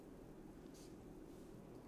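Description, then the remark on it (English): Quiet ambience, then a single bright, ringing clink of red wine glasses touching in a toast right at the end, sharp. “Three cheers.”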